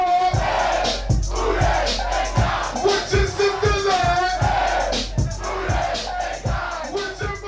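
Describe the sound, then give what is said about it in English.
A loud crowd at a packed a band hip hop concert in Miami cheers and chants steadily over a pounding bass beat, the thumps landing in a regular rhythm throughout. “It all starts with this concert that would change hip hop forever.”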